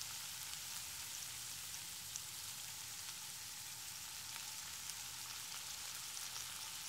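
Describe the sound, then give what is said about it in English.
Steady, crackling sizzle of food frying in a hot pan, a continuous hiss with tiny pops scattered throughout, moderately loud, with no voices. “Such a beautiful sizzling sound.”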